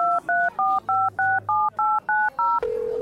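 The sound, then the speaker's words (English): Touch-tone telephone dialing of a phone number written on a napkin: nine quick, evenly spaced beeping key tones in a steady rhythm, followed by a single sustained lower tone on the line. No one speaks. “So just call the number on your napkin.”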